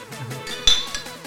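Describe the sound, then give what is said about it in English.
Glasses clink together in a toast: one bright, ringing clink, followed moments later by a softer second tap, with a low steady background underneath. “Hey. Cheers.”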